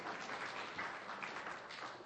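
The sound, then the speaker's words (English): An audience claps steadily for a couple of seconds, a dense, even patter of many hands, with no voices standing out above it. “Are you clapping because that was my idea”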